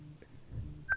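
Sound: incoming phone call ringing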